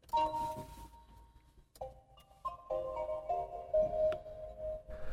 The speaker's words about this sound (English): The sound of an EV is very futuristic, and reminds me more of the startup tone on a mobile device as opposed to a machine.